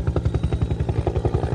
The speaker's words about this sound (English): Red helicopter is coming in now, and he's coming down right here into the car park.